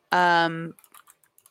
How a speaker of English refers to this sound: Alex is furiously typing.